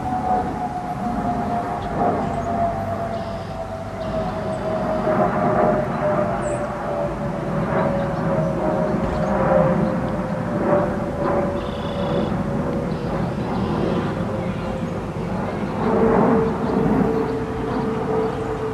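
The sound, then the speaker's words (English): A jet aircraft roars steadily overhead, its broad rumble joined by a high whining tone that slowly drops in pitch as it passes, loud and sustained with no voices. “Hello, flying jet.”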